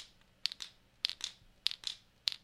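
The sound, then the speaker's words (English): A topwater lure worked side to side ('walking the dog') through the water, making sharp, bright rattling clicks in quick pairs. Four pairs repeat at a steady, even rhythm with no talking. “And that lure is going just like that through the water.”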